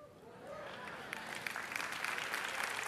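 An audience in Addis Ababa, Ethiopia claps together in a dense, steady patter that swells slightly louder over a few seconds, with a faint voice briefly rising above the applause early on.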